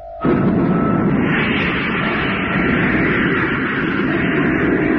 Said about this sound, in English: Then stand by. Everybody batten down. Okay, Jet. Atomic motor, fire!